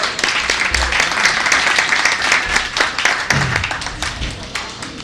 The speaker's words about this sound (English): Our next shout out goes to our auction winners from the previous month, and we would like to give them a big round of applause for their support for Golden Beer Talks.